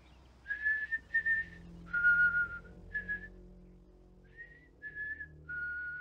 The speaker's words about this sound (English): I heard someone walking from her backyard across mine. Someone whistling. Whistling? Yeah. Some song I ain't heard in a long time.